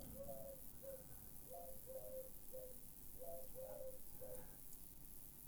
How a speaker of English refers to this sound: Oops. Okay, it wasn't me. It's actually a pigeon. It's Herbert. He hasn't visited me lately.